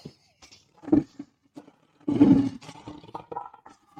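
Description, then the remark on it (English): A lion roar sound effect on a Chicago Bears show: a brief low growl, then a loud, rumbling roar that bursts out and trails off into fading grumbles, with no one speaking. “listen, it was a little meek, but we're gonna restore the roar.”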